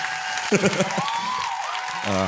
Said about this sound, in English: I'd like to note that applause was all fake and none of us were amused by that.